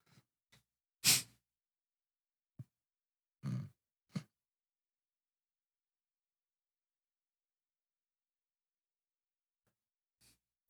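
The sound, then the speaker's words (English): A handful of short, raspy wheezing breaths and grunts from a Sith Lord villain in a movie, harsh and labored like asthma, separated by long stretches of near silence, with one last faint breath near the end. “What is this asthma having? Every Sith Lord has to have a breathing problem.”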